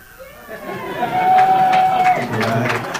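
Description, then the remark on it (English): A crowd outside, asked to yell really loud if they can hear, breaks into loud yelling and cheering about a second in, the roar holding steady to the end, with a sustained high whistle-like tone running through the middle. “All right, so outside, yell really loud outside if you can hear me.”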